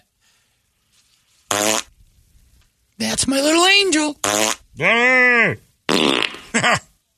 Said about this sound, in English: We'll go lay some farts down.